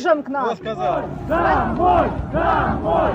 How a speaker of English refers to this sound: waving Ukrainian flags, singing patriotic songs, holding banners which said, in Ukrainian, Kherson is Ukraine, and shouting at these Russians saying, fascists, go home, occupiers, we don't want you here.